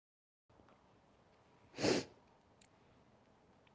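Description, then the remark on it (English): A single sharp cough, fairly loud, stands alone against a quiet, faintly hissy background with no talking. “Excuse me, I have to cough.”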